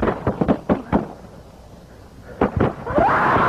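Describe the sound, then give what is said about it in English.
Rifle gunshots in a played recording of a man shooting at a police officer: a rapid burst of about six sharp cracks in quick succession, then a pause and two more loud shots, followed by a rising noisy swell. “And now he shot back at him again.”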